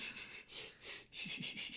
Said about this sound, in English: Like that breathing exercise was like, what's it called? The like birthing breathing exercise?